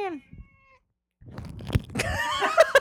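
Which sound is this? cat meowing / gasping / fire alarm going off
cat meowing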